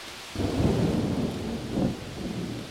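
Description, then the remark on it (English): Heavy rain pours down steadily while deep thunder rumbles, swelling twice in long low rolls over the constant hiss of the downpour. “Rain came pouring down.”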